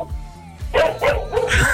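A dog barks three times in quick succession over a caller's phone line during a radio phone-in, the sharp woofs sounding thin and slightly distorted, with a low background hum between them.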